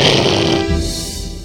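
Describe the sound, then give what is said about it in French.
A person growls loudly, imitating a roaring motorcycle engine in one continuous raspy burst lasting about a second and a half, as a sound effect in a discussion of the Mad Max films. “qui fait la moto”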